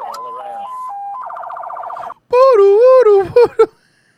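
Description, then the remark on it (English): A police-style siren on a truck outfitted with flashing lights like law enforcement uses, on Highway 301 in Marion County, Florida, stepping between tones before breaking into a rapid warbling yelp. After a brief gap comes a louder, wavering wail that ends in a few short, abrupt bursts. “The truck was outfitted with flashing lights and a siren like law enforcement uses.”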